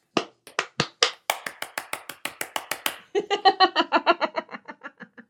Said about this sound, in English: Yay! Let's give it up for science, guys. Clapping for science.